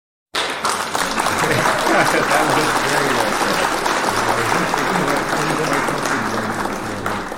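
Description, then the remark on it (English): A burst of applause begins abruptly and holds steady and loud for about seven seconds, a dense wash of many hands clapping with a faint murmur of crowd voices underneath. “That was hit the clap for that.”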